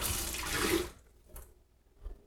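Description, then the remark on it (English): A loud rush of beer pouring down a kitchen sink drain for about a second, then quieter splashes and a soft knock as a glass is rinsed. No one speaks. “I'm going to pour this beer down the drain. I'm going to rinse my glass.”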